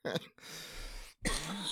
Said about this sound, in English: Yeah. You're making me cough over here because I'm laughing. Good. Let me make you cough some more.